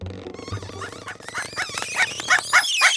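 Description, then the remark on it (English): A guard dog named Brutus snuffles and growls, breaking into a flurry of rising yelps and squeals that get louder and more excited over a few seconds. “Where's my guard dog?”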